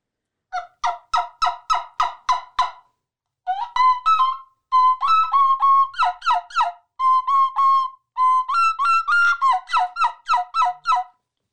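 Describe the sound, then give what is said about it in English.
A turkey call, played by positioning the lips on it and kissing or sucking air through it, sounds a run of sharp, rhythmic yelps, repeated in quick bursts of several notes each with brief pauses between, loud and clear with no talking over them. “You just kind of kiss or suck air through it to make the sound. I'll do some yelps.”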